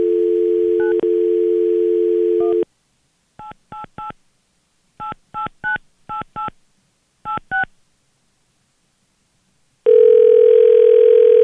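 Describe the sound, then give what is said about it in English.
A steady telephone dial tone, then about a dozen touch-tone dialing beeps in quick clusters separated by pauses, followed by another sustained ringing tone as a call to the Hair Club for Men connects. No one speaks. “But we thought it'd be fun to call the hair club for men.”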